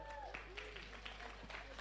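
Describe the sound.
Scattered audience applause, a loose spread of claps at moderate distance, fairly quiet, with voices faintly murmuring underneath.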